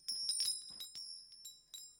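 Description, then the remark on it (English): Small bells jingle in a series of quick, uneven shakes, their bright high tones ringing on steadily between bursts. The sound is soft, with no one talking. “Not to mute you in your bells.”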